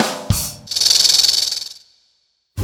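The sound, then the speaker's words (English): A snake gives a sustained, sharp, loud hiss lasting over a second, with a slightly pulsing texture before it tapers off into silence. “When a snake feels threatened or scared, it sticks out its tongue and makes that hissing sound.”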